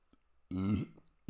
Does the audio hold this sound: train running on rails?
no